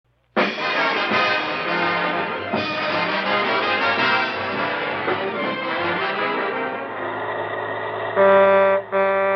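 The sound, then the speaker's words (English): A bus rumbles loudly along in traffic toward its Sunset Boulevard stop, its dense engine roar shifting as it slows, then a steady horn blares near the end. No one speaks. “Sunset Boulevard, next stop. Please leave the bus by the rear exit.”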